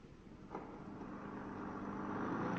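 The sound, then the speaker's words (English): A car engine hums steadily as the vehicle drives along, a low continuous rumble that grows slightly louder over a few seconds, with no voices present. “A designed car myself, Mr. Angus. As you see, it is extremely simple to drive.”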